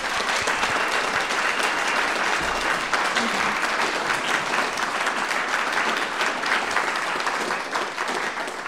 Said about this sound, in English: We will now finally ask our live audience for a round of applause for the candidates.